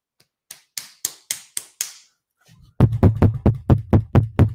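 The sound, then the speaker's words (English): A quick run of six sharp raps on a door, a brief pause, then louder, heavier pounding with a deep thud behind each of about eight more rapid knocks: Las Vegas Metropolitan Police knocking at a house door in Las Vegas. “Fucking knock on the door.”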